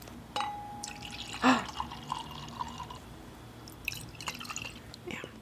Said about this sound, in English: It's like, you want more Lele? Yeah, pour it up.